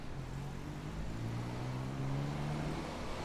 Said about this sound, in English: To the traffic rushing by, that's me on a weekday. I pass by here after work, often being stopped by the traffic lights, making me reflect on the statue nearly every day.